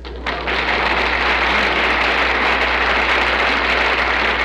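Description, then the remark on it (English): Audience applause on a radio comedy show, following Mary's recital of an Easter poem, breaks out suddenly and holds steady, a dense, even wash of many hands clapping at full loudness with no voices over it. “Well, you got a nice hand there, Mary, but you asked for it.”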